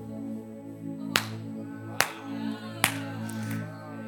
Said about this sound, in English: The Holy Spirit said, clap 3 times. I did it.